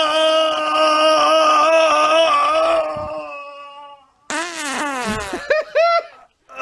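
A long, loud fart: a steady buzzing tone for about three seconds, then a brief pause before a string of sputtering, squeaky bursts trail off.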